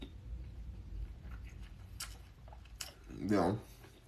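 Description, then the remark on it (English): Chewing on a fibrous stick with a bitter peel, used like gum for oral care, with a few crisp, scattered crunches and wet mouth sounds over a low background rumble, then a short voiced murmur near the end. “When I chew on this, I'm not gonna swallow the peel because the peel's too bitter for me.”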